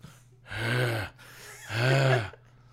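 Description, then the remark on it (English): Two loud, heavy panting breaths from a woman out of breath after running, who has stopped in front of her husband, each a long, raspy, partly voiced gasp with a short pause between. “stopping in front of her husband, panting loudly.”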